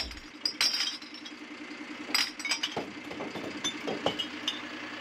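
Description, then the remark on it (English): A household recycling truck in South Northamptonshire idles with a steady low engine hum while glass bottles and cans clink and clatter in irregular bursts as the truck's side is raised and the contents are tipped into compartments within its body, with no one talking. “When necessary, the side of the truck is raised and the content is tipped into compartments within the body of the vehicle.”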